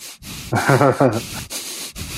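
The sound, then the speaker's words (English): Loud nose breathing into the microphone: a few harsh, rushing breaths in and out, with a short voiced hum in the middle, like someone imitating heavy breathing. “Nose breathing.”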